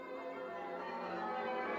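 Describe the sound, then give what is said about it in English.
The bells of the Cathedral of the Holy Trinity in Old Quebec City ring in the background at a cemetery, a continuous wash of overlapping metallic tones, steady and moderately loud, with no voices throughout the short stretch. “By the way, the bells you hear in the background are those of the Cathedral of the Holy Trinity in Old Quebec City.”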